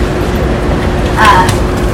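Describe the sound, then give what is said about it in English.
A loud, steady, low subway-car rumble from a staged effect in a haunted attraction, as the car continues out and falls down from the ceiling above, fills the whole moment, with a brief metallic squeal rising over it about halfway through, like a train car grinding past. “Looks like that car is continuing out, and it is falling down from the ceiling above us.”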